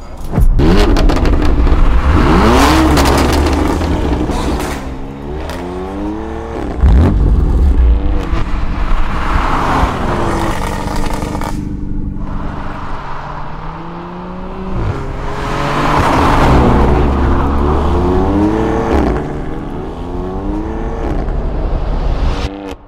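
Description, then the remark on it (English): A BMW M140i car engine revs hard, with repeated bursts climbing sharply in pitch and then falling back, loud and throaty with deep rumbling between revs. No one speaks. “That right there is a BMW M140i, a car I've been looking forward to driving for the longest time.”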